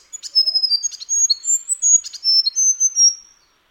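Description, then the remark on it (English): A grey fantail chirps in two quick bursts of thin, high, squeaky notes and slurred whistles, clear with no voices, then falls silent. “the grey fantail does this special bonding and acrobat trick to anyone that enters its territory.”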